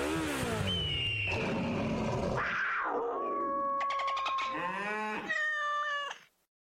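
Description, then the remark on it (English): A loud, whining motorcycle engine sound effect revs up and down in several rising and falling sweeps, with a strained, almost yowling quality, before cutting off abruptly near the end. “At Progressive, we know there's nothing like the feeling of riding a motorcycle with your crew on the open road.”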